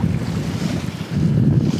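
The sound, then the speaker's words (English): Steady wind rushes over the open ocean as waves wash and slosh, with low rumbling buffeting from the breeze hitting the microphone on a moving sailboat under blue sky and white cumulus clouds; no voices. “As I said the other day, my favorite place to be on the boat.”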